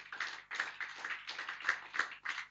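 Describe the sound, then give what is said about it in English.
A crowd applauds together during a sermon, clapping for God: a dense burst of many hands clapping with a few rhythmic surges, steady and fairly loud throughout with no voices standing out. “Can you give God a clap of?”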